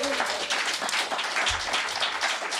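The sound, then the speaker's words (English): A crowd applauds both teams steadily, dense overlapping claps forming a bright, continuous wash of sound at even loudness throughout, with no voices standing out. “Round of applause for both our teams.”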